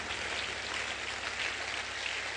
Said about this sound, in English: Oh, give the Lord a clap offering.